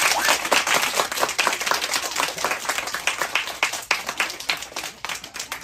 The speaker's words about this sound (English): Okay. One, all right, little pity applause there, that's fine.